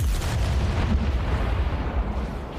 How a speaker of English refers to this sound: So we have explosions. So here's the sound of just a really cool sounding explosion with no animal in it.